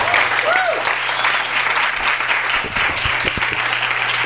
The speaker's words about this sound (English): I love the human applause sign. Can I at any point just say, applaud? Yeah, okay.